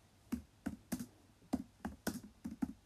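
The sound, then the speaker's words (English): Computer keyboard keys clatter in quick, uneven bursts of sharp clicks, fairly quiet, with about ten strokes in under three seconds and no voices. “Sorry if I'm slow at typing and you can just hear my keyboard typing away.”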